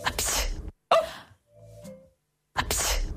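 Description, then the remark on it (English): A sneeze in the style of the country Georgia, performed as a series of loud, breathy bursts with a brief tonal, nasal middle section, then a final sharp explosive burst. “The country Georgia has its own sneeze.”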